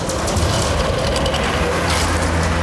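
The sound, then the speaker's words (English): A loud, steady rumble of a big bus engine with low droning tones and hissing road noise, running continuously for a few seconds with no voices. “Can I get a bus sound around here?”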